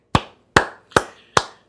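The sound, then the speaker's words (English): Four crisp hand claps at a slow, steady pace, each a sharp smack with a short ringing tail, and no voices; a clap for fantasy football players who captained Eden Hazard this week. “that clap is... for those of you out there in fantasy land who captained Eden Hazard this week.”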